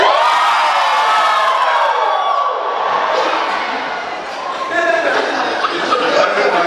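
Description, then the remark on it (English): An audience screams and cheers together on cue after a count of three, loud, a dense wall of high-pitched voices that holds steady for the whole several seconds with only a slight dip midway. “Did they scream on top of us?”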